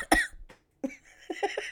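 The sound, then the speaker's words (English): A sharp cough from a person with hay fever and a sudden cough bursts out, followed after a short pause by a few quieter throaty hacks and rasping breaths, with no speech. “Mixed with my hay fever and a sudden cough that I've seemed to develop in the past 10 minutes.”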